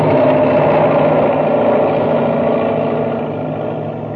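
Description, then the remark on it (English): A giant wheeled drilling machine roars by, a loud, steady mechanical rumble with a low droning hum that eases slightly toward the end. No one speaks. “the enormous driller roars down upon them.”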